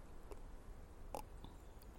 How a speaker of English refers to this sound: I'm going to take another sip of tea.